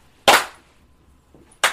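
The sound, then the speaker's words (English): Two sharp, bright hand claps ring out about a second and a half apart, each snapping loudly and fading quickly, with only a faint rustle in the quiet between them. “Give it a clap.”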